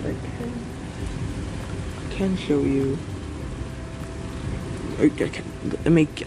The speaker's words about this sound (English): You can listen to the lightning. I don't know if you can hear the rain. Listen closely, because there is definitely rain. It's also my brother's fan in the next window over. But mostly just the rain, the lightning.